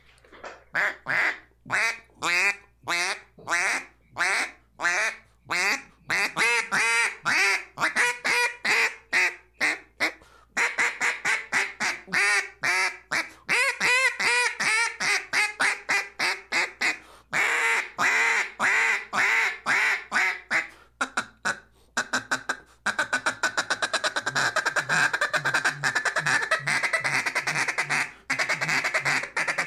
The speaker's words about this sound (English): it's one of the prettiest duck calls I've ever seen as far as a mass-produced, single-read, Arkansas J-frame-style duck call